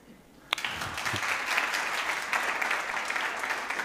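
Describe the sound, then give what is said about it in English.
Audience applause for the sound, video and tech crew bursts in after a sharp clap and holds steady as a dense wash of many hands clapping, fairly loud, with no talking over it. “And then the guys on sound and video and tech, they need double applause.”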